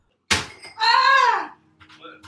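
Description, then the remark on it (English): A cabinet knocks into a ceiling fan with one sharp, loud thunk, immediately followed by a startled, high-pitched vocal yelp that slides downward before fading into quiet. “Well, my cabinet hit the fan. That's startled me.”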